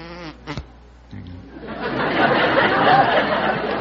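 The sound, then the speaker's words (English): A person mimics a bumblebee with a sustained, droning vocal buzz that swells louder and rougher over a few seconds, following a brief bit of voice at the start. “Yes, I can do a bumblebee.”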